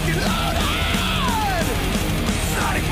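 A man yells in the background of a loud, dense song, his raised voice rising and falling against steady, driving music that fills the whole clip.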